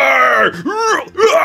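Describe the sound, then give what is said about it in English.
A voice imitates a screaming troll that has just been killed, with loud, strained, groaning cries in three quick bursts, the pitch swooping up and down, wordless. “You hear, as like the troll that you just killed, like was screaming like, oh, more for dinner.”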